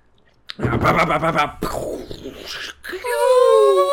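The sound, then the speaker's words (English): A man vocally imitates a fighter jet: a gritty, rumbling roar of breath and throat noise, a short break, then a sustained rising whine with a steady, bright tone. “That's the fighter jet.”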